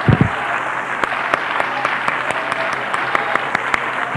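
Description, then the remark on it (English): An audience claps unto the Lord in a steady, sustained burst of applause, many hands overlapping into a dense, even wash with sharper individual claps popping out at a regular pace. “Come on, let's clap unto the Lord.”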